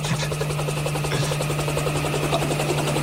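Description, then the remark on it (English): A helicopter's rotor thumps and drones steadily and loudly throughout, a dense continuous whirring roar with a low hum underneath, unbroken. “Tell us from the helicopter.”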